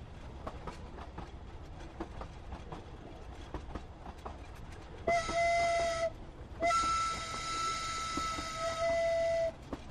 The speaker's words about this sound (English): Nah, that's the ghost train coming through.